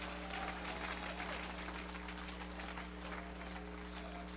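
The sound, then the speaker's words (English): A church audience claps hands steadily and continuously, a dense wash of many overlapping claps at a moderate level, with a low steady hum underneath. “Oh, clap your hands, all ye people.”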